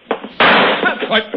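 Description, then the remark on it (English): A single loud rifle shot cracks out, its sharp report trailing into a short rumbling echo, with brief bits of voice just before and after. “Now the next shot's going to be closer, boy.”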